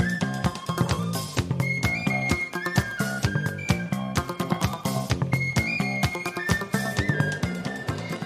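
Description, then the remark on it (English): A bright penny whistle plays a lilting solo melody over a full, upbeat band with thumping bass and steady drums, loud with no voices. “Should we just hit the penny hit whistle? Hit the penny solo? Whistle part. Here we go.”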